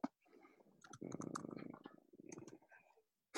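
Rapid bursts of soft clicking, like keys tapped on a keyboard, come in two flurries with a short pause between them, fairly quiet.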